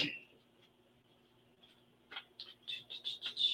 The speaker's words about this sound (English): So let's see. I'm just going to grab some cards here, shuffle them.